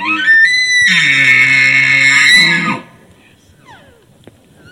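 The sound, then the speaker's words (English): An imitated elk cow's excited mew: a single loud, high-pitched, whiny call held steady for nearly three seconds before cutting off, followed by near silence with a few faint chirps. “So that is what I call the excited mew, okay?”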